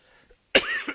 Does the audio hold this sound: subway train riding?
no